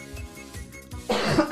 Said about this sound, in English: And you coughed all over. Getting too excited here.